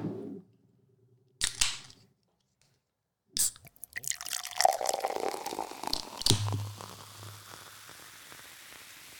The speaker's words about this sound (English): Opening the can. You should put it in a glass. Nose to can. Oh, I'm about to.